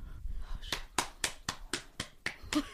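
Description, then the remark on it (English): Eight sharp hand claps in a quick, even rhythm, the UCLA eight-clap cheer pattern, moderately loud and crisp with no voices over them. “Eight clap? Yeah, yeah. Well, how does it go?”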